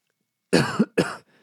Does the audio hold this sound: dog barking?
no